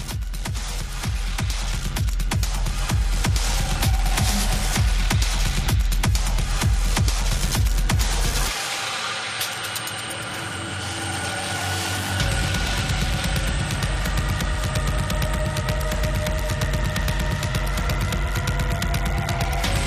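Harsh, heavily distorted underground techno with a pounding, rapid kick pattern and gritty noise. Around the midpoint the low end drops out to a brief breakdown of buzzing tones, then the full driving beat returns.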